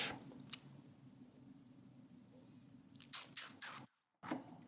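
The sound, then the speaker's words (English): A few short sipping or slurping sounds from a glass of wine come in quick succession near the end, over a quiet low hum, with a brief moment of silence between them. “So I'm going to take another sip and maybe pour one out for, you know, for the Ravenswood brand.”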